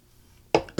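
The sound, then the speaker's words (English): A short, throaty burp from someone drinking beer erupts suddenly after a quiet stretch, loud, followed a moment later by the start of another brief burst. “Sorry, we're kind of drinking beers.”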